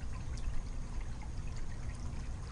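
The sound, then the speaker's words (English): A small backyard fountain at night, where birds drink, trickles steadily: a soft continuous wash of water with small splashes and droplets flickering through it. No one speaks. “I am recording right now in my backyard, and the sprinklers might be going on at any minute, and I'm sitting here with my laptop, and it's night, and I'm sitting by, I don't know, let me see if you can hear the fountain.”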